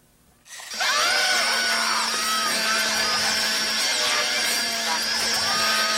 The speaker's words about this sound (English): He opens up the music box. And it's just the sound of that crazy motor from his vacuum earlier. Yeah, from the first. The Supremo vac. Earlier in the movie.